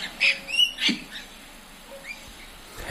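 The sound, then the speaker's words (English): Birds chirp in a few short, high bursts over three seconds, a cluster early on and softer calls later, moderately quiet against a faint background with no one talking. “With that, the birds fell silent.”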